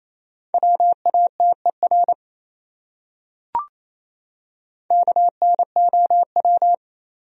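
Fast Morse code beeps in a steady mid-pitched tone, two bursts of quick dots and dashes separated by a pause with a single sharp click, around 28 words per minute.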